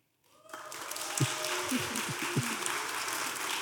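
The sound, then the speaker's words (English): An audience votes by applause on a trivia guess of 250 movies, a dense wash of clapping that starts abruptly and holds steady, with a few voices murmuring faintly underneath. “So we're going to go, you're going to vote by applause.”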